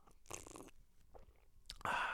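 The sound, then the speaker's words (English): A loud slurping sip of coffee from a cup, with a noisy airy burst of drawing in liquid, a short pause with faint mouth sounds, then another louder, longer slurp at the end. “A cup of coffee here. I'm gonna take a sip.”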